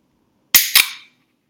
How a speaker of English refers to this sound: But I don't know if I can do this and have you hear it, but when you open this can, it's going to sound just like opening a can that you like. Hold on, let's see.